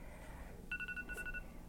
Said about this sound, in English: That's my timer, so I realize we're we're out of time.